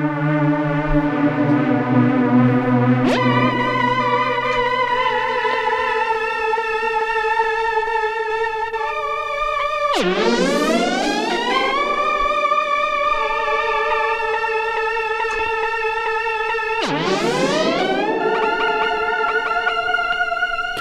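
Sustained synthesizer chords with bright, buzzy harmonics, punctuated by two sweeping upward pitch glides that bend into new notes and ring out with a reverberant wash. No voices.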